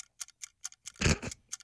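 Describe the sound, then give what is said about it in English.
A 60-second countdown timer ticks in a quick, steady rhythm, each tick crisp, briefly swallowed by a louder, fuller burst of sound before the ticking resumes. “We got 60 seconds. God damn. You got to pick one? D-Wade. Stop the clock.”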